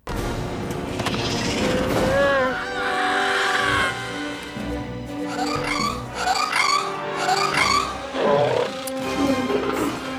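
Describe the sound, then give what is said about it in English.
A Trandoshan screams as Chewbacca throws it off an elevated airbase: shrill, honking alien screeches like the velociraptor's cry in Jurassic Park 3, rising and falling in several raspy bursts over a dense bed of battle noise and music, loud throughout. “Oh, and we're going to start with Chewbacca throwing a Trandoshan off of the elevated airbase, because I just like to hear Trandoshans scream, apparently.”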